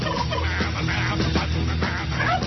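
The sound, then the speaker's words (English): Turkeys gobbling in a noisy, continuous chorus, several birds calling over one another with dense, rattling bursts and no voices. “A lot of gobbling going on, I'll tell you that.”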